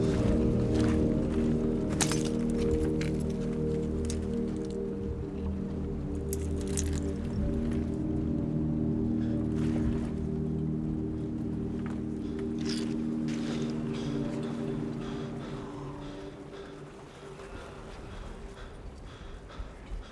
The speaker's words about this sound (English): After that first battle sequence in the trench, when Paul is walking along and he steps on what turns out to be his friend's glasses.